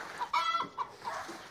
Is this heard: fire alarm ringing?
no